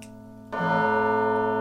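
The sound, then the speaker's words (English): Electronic instrumental music with no voices: a soft sustained synth tone, then a sudden jump to louder, layered, buzzy chords that hold steadily to the end. “We'll just play this in the background for a little bit, will we? This is a great song. There's no lyrics in this”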